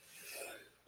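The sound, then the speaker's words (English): A single sneeze, brief and breathy with a hissy rush of air, fairly soft, with no talking around it. “Bless you.”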